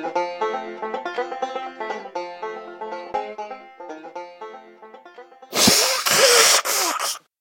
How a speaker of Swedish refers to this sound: Låter det så mycket när jag snyter dig? Shit, jag tror det gick inåt. Nej, det var en snytning. Du snyter dig genom munnen så att du drar inåt och kommer ut genom munnen.